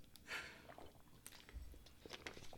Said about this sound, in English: But we both literally took a sip of water at the same time.